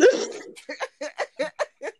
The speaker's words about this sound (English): just burped so loud, I'm pretty sure the sound picked it up. I actually didn't hear it. I didn't hear it. I heard the sorry.